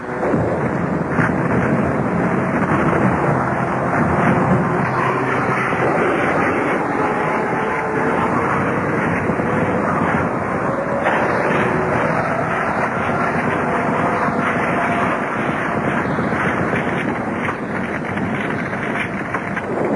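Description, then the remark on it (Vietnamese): A dense, unbroken roar of many types of American aircraft engines during an air raid fills the scene, loud, with heavy rumbling underneath that suggests blasts blending into the din. No voices are heard. “Trận không tập này tương đối khá lâu, có lẽ gần 2 tiếng đồng hồ.”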